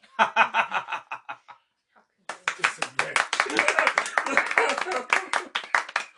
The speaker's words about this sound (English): No, we got a round of applause.